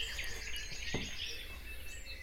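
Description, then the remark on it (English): A dawn chorus of blackbird and song thrush, dense overlapping birdsong filling the air continuously, fairly soft, with no voices. “The dawn chorus really is made up of blackbird and song thrush in most places, especially where there's trees.”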